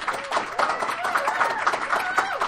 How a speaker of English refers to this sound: Thank you so much for being on Why Are People Into That? Can everybody give Dr. Carol Queen a round of applause?